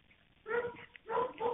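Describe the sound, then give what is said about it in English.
Dogs barking in the background of a 911 phone call, two drawn-out, yelping barks a moment apart, muffled and fairly faint as heard over a phone line. No one speaks. “In some parts, you can clearly hear the dogs in the background, which means that he's close to the murder scene.”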